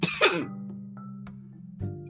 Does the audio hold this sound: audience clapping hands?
no